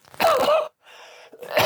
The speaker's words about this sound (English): Anyway, I need to cough.